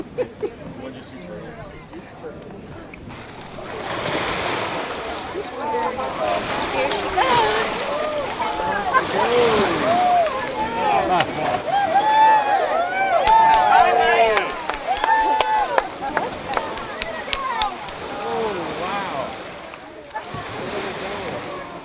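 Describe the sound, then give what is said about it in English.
A crowd of many voices chatters and calls out together outdoors at a sea turtle release at Bayfront Park on Anna Maria Island, swelling louder midway, over a steady wash of surf and breeze at the shoreline. “We are at the release site on Anna Maria Island, Bayfront Park.”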